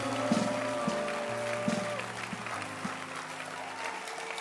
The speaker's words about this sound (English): Or let your hand clap match the beauty of the evening. Very nice. Very beautiful. Very powerful. Let your hand clap be big and strong and loud.